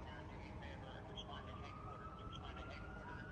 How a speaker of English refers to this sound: You can hear the cop radio. You can hear sirens there in D.C.